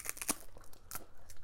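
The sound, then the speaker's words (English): Crisp crunching as someone bites into crunchy food right at an Amazon Prime microphone, with several sharp crackly bursts spread unevenly over a moment and no talking. “Crunch I'm going to take another bite.”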